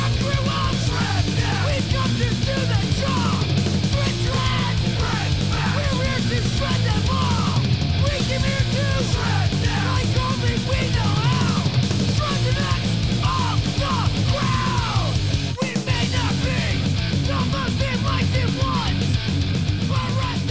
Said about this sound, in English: He takes like 5 Advils before he goes on stage. To scream like that the whole time. Advil for the headache he's going to get from screaming like that.